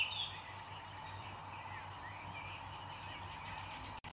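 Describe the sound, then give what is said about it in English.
Steady outdoor forest ambience with scattered bird calls and chirps over a constant background hiss, moderately quiet and unbroken until it cuts off abruptly at the end. “Here is a sample of bird songs and forest ambience.”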